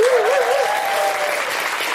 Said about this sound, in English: A big round of applause for everyone today who came and communed with us here in the audience and was here at a live Guilty Feminist event.